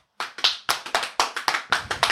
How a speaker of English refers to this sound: And round of applause.